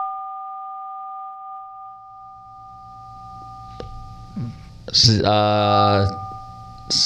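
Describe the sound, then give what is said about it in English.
A steady dual-pitch keypad tone from a button held down on a phone drones on without a break for the whole stretch, while a voice briefly breaks in near the end. “Holding down on something on the phone there.”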